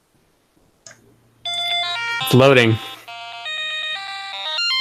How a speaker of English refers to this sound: It was beeping. That's great.